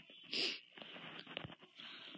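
A drawn-out yawn, opening with a breathy rush of air and trailing into a long, wheezy, strained exhale lasting a couple of seconds.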